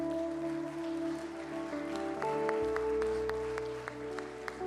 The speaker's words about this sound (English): Come on and give Jesus a hand clap of praise.